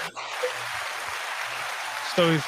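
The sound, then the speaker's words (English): A canned applause effect played from a mixing soundboard: steady, dense crowd clapping holding at an even level for a couple of seconds before a man's voice briefly cuts in at the end. “Wow, this the applause thing keeps going because it's still blinking.”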